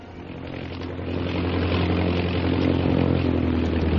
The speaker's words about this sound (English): Shanghai Lil's big black seaplane circles the plantation and finally comes to rest on the ebony surface of the river.